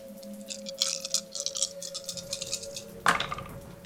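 A handful of dice rattle and clatter in quick, bright clicks for a few seconds, ending with a sharper clack as they land. A steady low hum runs underneath, with no talking.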